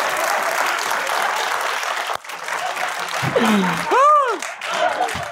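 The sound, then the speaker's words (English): An audience claps steadily for several seconds, a dense crackle of many hands, briefly dipping before resuming, with a rising-and-falling shouted whoop near the end. “Y'all can clap if y'all want to.”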